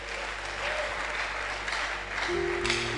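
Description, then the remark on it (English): Steady applause from an audience for young people, dense and sustained for a few seconds, with a low hum and a faint tonal sound joining near the end. “Oh, clap for them, the young ones.”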